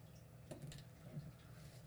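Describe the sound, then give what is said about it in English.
Dice rattle and tumble across a surface: a few faint, scattered clicks followed by a sharper clack at the end, with a low background hum and no talking. “So let's roll the dice and see what's up first.”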